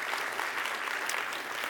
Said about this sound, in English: I'd like to ask you if you would give a round of applause to the band for their willingness to be here on Christmas Eve and lead us.